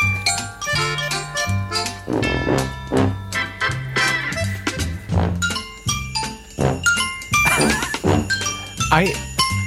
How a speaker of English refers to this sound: They've got the sleigh bells. Yeah, they got everything.